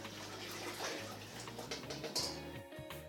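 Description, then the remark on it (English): Whey trickles and drips steadily from strained cheese curds, a continuous watery patter over a low background hum, with no one speaking. “Until it stops dripping. So now it stopped dripping.”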